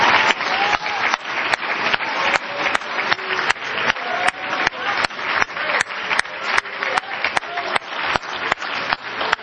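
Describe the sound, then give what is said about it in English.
An audience applauds steadily for about nine seconds, giving a hand clap for the Life Tabernacle church: a dense wash of many hands with sharper claps landing in a quick, regular rhythm throughout. No one speaks over it. “Give this good church a hand clap.”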